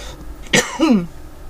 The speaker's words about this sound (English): Speaking of that, I still have this nagging cough due to my asthma. Okay, it comes for me as an asthma attack as a cough.